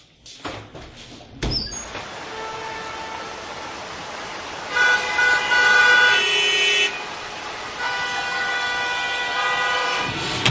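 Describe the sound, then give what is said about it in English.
Busy street traffic with a steady rumble of engines, broken by a sharp knock and then long, loud car horns blaring in two extended stretches. “Traffic na naman.”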